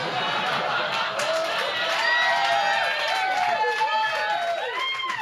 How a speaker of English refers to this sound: You know when the audience are like, woo! With all their clapping. And I love that bit.